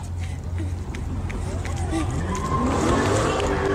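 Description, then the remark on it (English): Quick running footsteps of a woman patter down the Lodge freeway in Detroit, where cars are turning donuts, amid a steady roar of traffic and wind, with several voices talking and calling out in the background. “But you can hear the woman's footsteps running down the Lodge in the video, something that would be extremely dangerous otherwise.”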